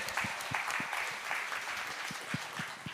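A crowd applauds steadily, with dense overlapping claps forming a continuous bright wash and a few sharper individual claps standing out, at a fairly loud level throughout.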